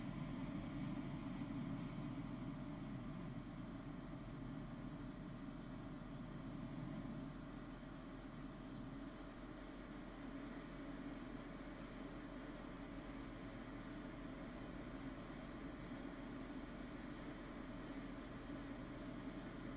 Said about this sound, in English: Now that you are more relaxed, here is a demonstration of hemisync sound. First, we change the background sound from ocean surf to pink sound.